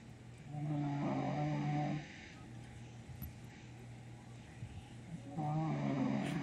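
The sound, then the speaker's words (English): George, a Rhode Island Red chicken, snores in two drawn-out, rasping breaths, one near the start and one at the end, over a steady low hum with a quiet gap between them. “For everyone, this is Rhode Island Red, George, snoring on the pulse.”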